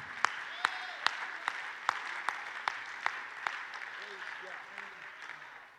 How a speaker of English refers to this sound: We need to clap our hands and thank God for everybody that is here tonight, because you're in the family.